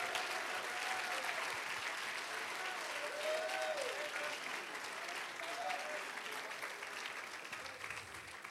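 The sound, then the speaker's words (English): Steady applause from an audience, a dense, even patter of many hands clapping that holds at a constant level for several seconds, with faint voices and a few calls mixed into the crowd noise. The audience applauds a standing group of people going to Sitka and Ketchikan this summer. “And I think they stand, they deserve an applause.”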